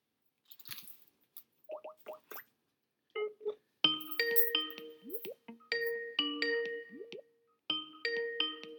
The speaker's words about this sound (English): It's ringing.